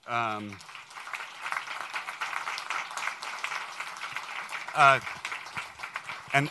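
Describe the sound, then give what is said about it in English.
An audience applauds the Mercy team members behind a housing project, a dense, steady patter of many hands clapping for several seconds, while a voice speaks briefly at the start and again near the end. “Other than clapping for me, I would like you to hold your applause.”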